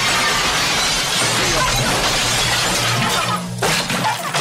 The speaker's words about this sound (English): And this kicks off with the Nazis being very overdramatic, as Nazis tend to be. Especially movie Nazis. Starts out with them busting into a home. Crashing through windows.